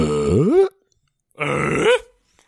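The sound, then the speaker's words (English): A man imitates Tim Allen's Tim the Tool Man grunt twice into the microphones, each a gravelly, rising vocal rumble that swoops upward in pitch before cutting off, with a pause between them and no talking. “Everybody, Tim the Tool Man in the mics.”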